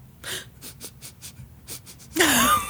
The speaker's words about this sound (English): What are you sniffing? I'm smelling a lawsuit.